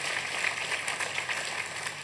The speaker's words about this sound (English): Yeah, okay, come on, give the Lord a huge round of applause. It's amazing.